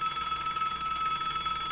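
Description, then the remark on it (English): A telephone bell rings continuously, a bright metallic trill that holds steady and fairly loud for the whole moment, with no voices over it. “The phone rings and Samantha looks to it, knowing it could be Chief Shepherd.”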